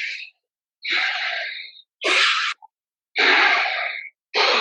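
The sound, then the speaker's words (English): Loud, forceful breaths pushed in and out in quick succession during a Wim Hof method breathing exercise, about five sharp bursts with short gaps between them, with no talking. “So you do these quick in and outs, like a”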